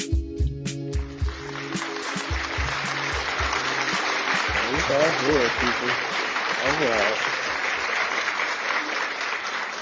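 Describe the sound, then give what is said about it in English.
Loud, sustained clapping from many hands fills the whole stretch, a dense steady roar of applause with voices shouting and whooping over it, especially near the start, celebrating that live football is a day away. “Yeah, that's what the claps were for.”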